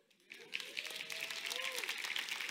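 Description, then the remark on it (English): An audience bursts into steady applause, a dense crackle of many hands clapping at once, with a few rising whoops and cheers threaded through it. “I don't do that for the applause.”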